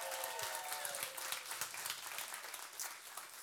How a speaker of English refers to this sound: Everyone who's here in person, can you shout and clap just to say hi to everybody who's online real quick, just to let them know?